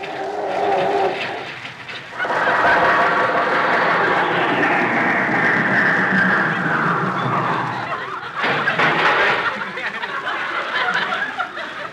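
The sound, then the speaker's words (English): An old car engine, imitated by a human voice, wheezing, coughing and sputtering as it fails to start, a long grinding whine sagging in pitch, then a second short sputtering burst; Jack Benny's car being tried in the garage at his house in Beverly Hills. “I can't understand why the car won't start.”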